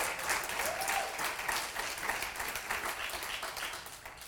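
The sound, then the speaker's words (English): Sustained applause from a church audience for the church leadership: a dense, steady wash of many hands clapping at once, holding an even loudness throughout with no voices standing out. “Give a round of applause to the leadership in this church.”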